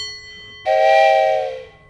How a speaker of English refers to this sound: Right here I have an antique desk bell, and then I'm going to play a train whistle.